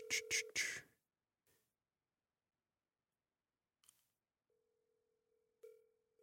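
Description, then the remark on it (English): A phone call being placed to a cousin: a burst of quick beeps and clicks, a short pause, then a soft clack and a steady, low electronic tone humming on until the end. “Make a phone call right now.”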